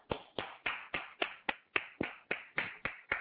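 A single pair of hands claps twelve times at a steady, fairly quick pace, each clap sharp and bright with a short ringing tail, and no talking in between.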